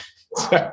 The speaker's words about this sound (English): As always, the dog saying goodbye in the back.